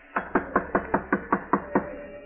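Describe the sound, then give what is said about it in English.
A quick, evenly spaced series of about nine knocks, like knuckles rapping on a wooden door, moderately loud, with no voices; George knocks at the door of a place where shelter is sought after the car's motor died. “Knock, George. Knock.”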